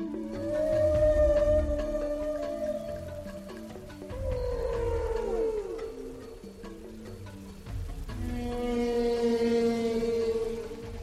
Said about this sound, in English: The utterances of humpback whales are long, complicated, fabulous, interesting, extraordinary collections of noises and sounds which have everything from things that sound like outboard motors to things which are high, beautiful, keening notes.